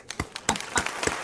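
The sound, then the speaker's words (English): A brief round of applause: a handful of sharp, loud hand claps in a loose, uneven rhythm, roughly four or five over a second, with no talking underneath. “That is that gets a round of applause.”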